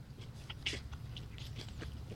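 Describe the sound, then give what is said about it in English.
Wet chewing right at the mic of a bacon cheeseburger with a hand-made 100% certified Angus beef patty and pickles, with a steady run of soft crunches and smacking bites over about two seconds, no talking. “Take a bite. This is from Hattie's Burgers and Blues.”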